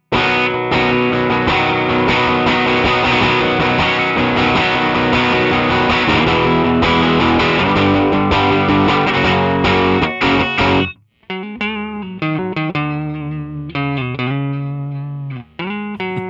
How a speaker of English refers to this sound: I turn the gain up. Yeah. So whereas, like, you know, you play and you're getting a lot more distortion because of a thing with the humbuckers.